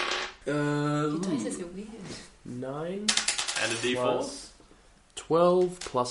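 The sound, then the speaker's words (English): A quick clatter of dice, including a four-sided die, tumbling across a tabletop for an attack roll in a tabletop game, a short burst of rattling clicks in the middle, surrounded by people talking and drawn-out vocal sounds. “Dice are weird. 9 and a D4.”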